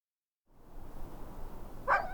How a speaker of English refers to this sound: The dogs greeted me at the gate, tails wagging like crazy, yodeling the way they do when they're ecstatic to see me.